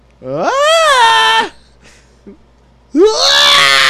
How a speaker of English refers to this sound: Mail scream. Where the fuck did it go?